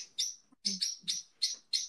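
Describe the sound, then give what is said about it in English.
A pet bird on a handmade hanging perch chirps in a quick series of about five bright, sharp calls, fairly loud, with brief pauses between them and no talking. “Your bird's agreeing. He's just gone. He's on his hanging thing I made for him, and he's gone crazy.”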